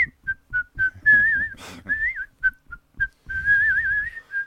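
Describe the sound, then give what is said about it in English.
Someone whistles a bright, bouncy happy tune, with short staccato notes and a few longer warbling phrases, no talking over it. “And it's virtually impossible to be cut and upset when you're whistling a happy tune.”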